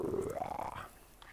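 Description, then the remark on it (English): A dog outdoors on a hot, dark night lets out a single drawn-out growl that rises in pitch like a little roar, fairly loud, lasting about a second before fading into quiet. “We got the roaring lion out here. The roaring lion dog.”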